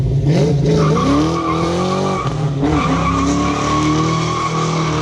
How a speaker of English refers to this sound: So what's the appeal of an intentionally loud exhaust system?